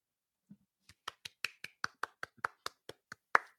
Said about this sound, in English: I was hoping as a producer, you were going to be able to put in applause, not just you applauding.